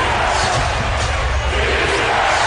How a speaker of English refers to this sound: Hands to Johnson. 3. Got it! Crowd's going nuts. 9-point game.